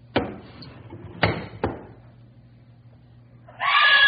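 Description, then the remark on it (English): Several heavy knocks or thuds sound over a low hum, then after a quiet stretch a loud, shrill woman's scream bursts out at the very end and is cut off. “Why'd you scream?”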